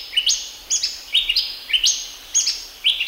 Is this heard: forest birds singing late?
yes